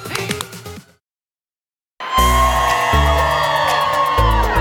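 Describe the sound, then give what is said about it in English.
A short burst of music, a second of silence, then a loud crowd at Rockefeller Center cheering and whooping outdoors over pumping music with a heavy, thumping bass beat that continues to the end. “What a fun, happy crowd at Rockefeller Center.”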